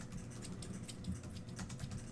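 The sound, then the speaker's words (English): Scissors snip repeatedly close to the microphone, a quick series of crisp, irregular metallic clicks at a soft level, with no talking. “Scissors sound like scissors.”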